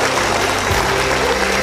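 Sustained audience applause, a dense, steady wash of many hands clapping at an even loudness throughout the short clip, with no voices over it.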